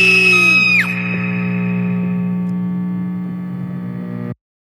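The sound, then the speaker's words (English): Dense, distorted electronic hum drones steadily while high wailing human screams slide downward and fade in the opening second, and the whole harsh wall of noise then cuts off abruptly. “There's nothing more comforting than the sounds of humans screaming.”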